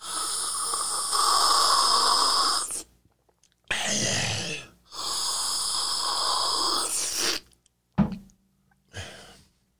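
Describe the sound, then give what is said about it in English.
Someone imitates the way old-time Italians loudly sipped espresso: two long, harsh, hissing slurps lasting a few seconds each, followed by a few shorter sucking bursts with brief gaps of silence and no talking. “When they drank their espresso, they had to sip. They would do this.”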